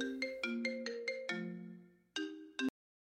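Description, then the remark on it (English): A phone rings with a quick melodic ringtone: a rapid run of bright, tonal beeps rising and falling, then a pause and two final notes before cutting off. No voices are heard. “That better not be you on the phone, Leo.”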